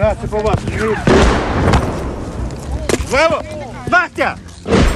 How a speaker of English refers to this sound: And more shells landed outside. So at that point, we were really coming under semi-serious shelling and we decided to just stay put until we were completely sure that the attack was over.